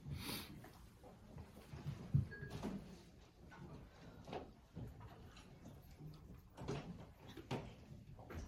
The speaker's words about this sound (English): If you don't mind just closing that door, those doors. Thank you.